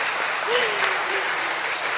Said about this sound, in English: So could we give our kiddos a round of applause so I can collect myself for a few minutes?